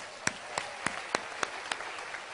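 Quiet audience applause: a steady wash of clapping with a few sharp, evenly spaced claps standing out in a regular rhythm, about three per second. No voices.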